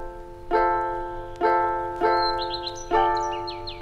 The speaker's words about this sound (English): The birds. Oh dear.